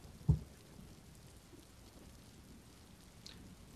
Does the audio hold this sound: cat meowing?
no